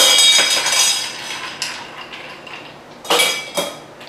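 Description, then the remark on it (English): Large ice cubes clatter into a glass while making a cocktail with Methuselah white rum, a bright ringing clink at first, followed by a few softer knocks and two more sharp clinks near the end, fairly loud with no talking. “Some good big ice cubes.”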